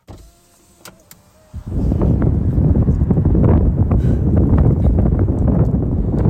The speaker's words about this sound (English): Do you guys want to hear how windy it is outside?